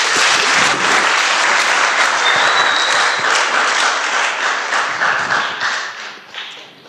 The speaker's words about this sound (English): What I'd like you to do is I'd like you, along with me, just to give a round of applause. No voices, just hand clapping for the ladies. Would you clap the wonder of the ladies?